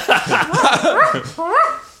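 A dog lets out a rapid run of short, high-pitched yelping barks and whiny cries, fairly loud, with a brief pause before a final drawn-out yelp.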